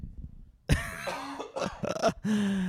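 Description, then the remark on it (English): A loud cough bursts out suddenly after near silence, followed by a few rough, raspy throat-clearing hacks that trail into a strained, voiced sound. “A joke and a cough.”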